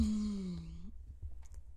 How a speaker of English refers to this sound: Sorry, I yawned for a second.